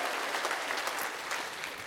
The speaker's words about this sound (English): Come on. Like, let's applaud. That is exciting. This is exciting stuff.